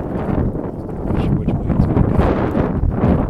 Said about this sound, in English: It's just a loud car. Little souped-up Nissan.